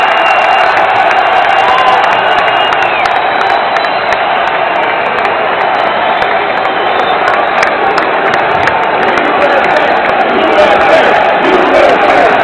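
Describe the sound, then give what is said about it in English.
A huge crowd of about 20,000 at the UFC 287 arena event roars continuously, standing and chanting for Trump and USA. Thousands of voices cheer, shout and chant together in a loud, unbroken wall of sound, with scattered whoops rising above it. “They're just screaming, standing on their feet, shouting out for Trump.”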